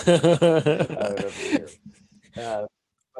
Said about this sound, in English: he was just breathing super heavy just to be annoying. anyways, looking at me the whole time too.